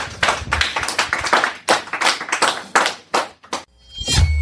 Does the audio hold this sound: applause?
yes